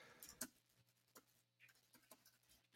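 Quiet computer keyboard typing while searching something on Google: a handful of sparse, irregular key clicks scattered across a few seconds, with a louder keystroke at the very end and no talking.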